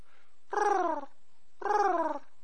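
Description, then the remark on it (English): Two low, throaty cooing sounds, each about half a second long, separated by a short pause. A person is imitating a pigeon's coo, moderately loud, with no other talking. “Let's just make cooing sounds.”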